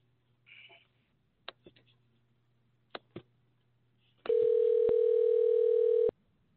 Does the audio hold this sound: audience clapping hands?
no